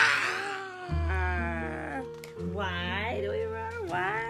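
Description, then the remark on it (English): Children imitate a dinosaur roar with their voices at the end of a dinosaur story: loud, drawn-out, wavering cries that rise and fall in pitch, coming in about three overlapping bursts with no pauses between them. “And then we roar.”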